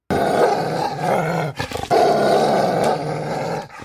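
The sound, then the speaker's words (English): A wolf growls loud in two long, rough, snarling stretches split by a brief break as it bites down on muscles and tendons, twisting its head to rip and tear, with no one speaking. “I closed my teeth on those muscles, on those tendons, and I clamped with all the shocking power the wolf possessed. I twisted my head savagely, ripping, tearing, trying to do damage.”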